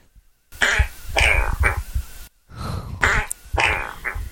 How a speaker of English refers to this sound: These farts have names, but your job is to see how close we can get to the name.